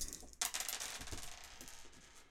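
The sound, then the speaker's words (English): A handful of dice clatter and tumble across a hard surface, a sharp initial rattle followed by a few scattered clicks that settle over a couple of seconds, fairly quiet. “We have a house rule where you can spend 2 nudges and put those to the side and re-roll all the rest of your dice.”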